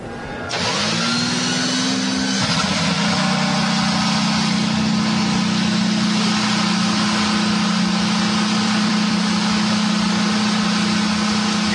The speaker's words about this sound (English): Firing up and down pit road, 26 cars getting ready to roll off the grid as we get set to go racing the Acura Grand Prix of Long Beach.